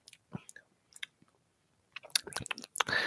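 Chewing of a crunchy peach and pecan snack: a few scattered, soft bites at first, then denser, wetter crunching and munching near the end, with no talking.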